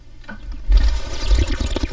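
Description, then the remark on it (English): A person makes a wet, gurgling bubbling noise with their mouth and water, without any apparatus, imitating someone ripping a bong. It is loud, bursting in after a quiet moment and churning steadily, with no talking. “God, really sounds like what I picture a bong to sound like.”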